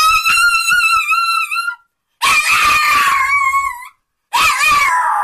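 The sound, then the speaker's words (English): A dog, Casper, howls excitedly on hearing the name Bailey, in three loud, wavering, high-pitched bursts separated by short pauses, with no talking over it. “The doggy loves Bailey, loves Bailey so much.”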